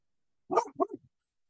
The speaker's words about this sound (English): There's Edmund barking outside. We're doing this podcast outside, so sorry about that, folks.